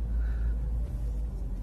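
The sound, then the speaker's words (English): A steady, deep engine rumble fills the inside of a car as the driver sets off after work on a hot Friday, about to get onto a freeway, constant with only slight swells, and no one speaks over it. “Be hopping in the car.”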